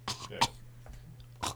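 A few short, harsh coughs, three bursts spread unevenly across a second and a half, with a throat-clearing quality and quiet gaps between them.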